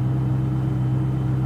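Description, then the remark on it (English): A Koenigsegg supercar engine idles steadily, a deep, even rumble with a strong low hum that holds constant throughout, no revving or voices. “Let's just the engine settle in.”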